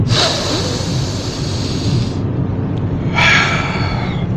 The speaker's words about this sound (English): A nice little consciousness movement where we all take a deep breath.